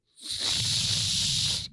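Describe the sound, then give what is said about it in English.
A survival bracelet whistle blown once for over a second, producing only a steady, breathy rush of air with no clear tone, plus a faint low rumble beneath. “It's a survival bracelet. One, if you're caught, stuck somewhere, it's got a whistle.”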